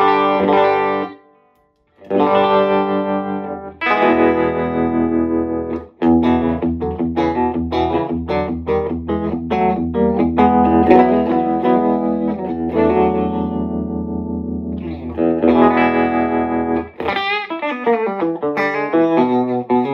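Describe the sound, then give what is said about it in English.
Electric guitar played alone through a warm Vox EF86 tube amp, mixing strummed chords and picked single-note runs with the amp's pulsing tremolo and a light wash of reverb from a reverb pedal, fairly loud. “And again, I'm just using a reverb pedal. That's the only thing I'm using. And just a touch of verb.”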